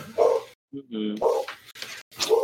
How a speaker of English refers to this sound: My dog's barking again. I'll be right back.